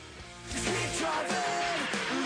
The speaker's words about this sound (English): Oh, is that a scream? Did you guys hear that? Can we back up and get the scream, please?